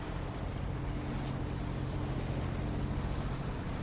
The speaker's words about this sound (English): The boat makes its way northwest of Fort William.